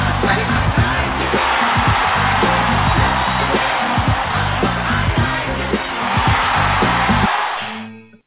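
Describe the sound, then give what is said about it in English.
A crowd-cheering sound effect: a loud crowd cheers in a steady, dense roar for about eight seconds over low, pulsing tones underneath, then cuts off quickly at the end. “Justin Fields, and the crowd goes wild. Where's the fucking crowd?”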